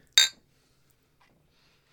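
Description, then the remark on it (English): A single bright clink of glasses of beer tapped together in a toast, crisp, ringing out briefly before fading into near silence with no talking. “Cheers.”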